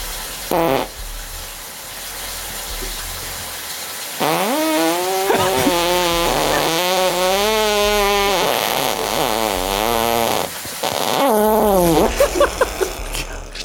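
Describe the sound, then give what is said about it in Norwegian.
A contestant, number 7052, farts with the buttocks against a microphone: a long, loud, buzzy fart with a wobbling, rising and falling pitch runs for several seconds, then breaks off and resumes as a shorter sputtering burst. No talking is heard. “Og rumpa mot mikrofonen, vær så god.”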